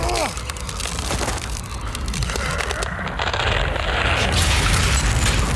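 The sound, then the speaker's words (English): A dense layer of ice cracks and crunches as the outside door of a building is pushed open in cold wind, giving way on the third push, with dense irregular snaps and splintering over a low grinding rumble that grows slightly louder toward the end. “A dense layer of ice slowly gave way on the third push.”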